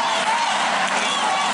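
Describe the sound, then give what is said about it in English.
A large sports crowd roars in a dense, steady wall of voices, loud and continuous, like fans chanting together in a stadium. “And this, support athletes by clapping and not singing or chanting. That's right, chants like this are forbidden.”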